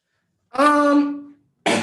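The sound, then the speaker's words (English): A single drawn-out, throaty cough with a strong voiced, rasping tone fades out after nearly a second, then another sharp burst cuts in abruptly at the very end. “me coughing.”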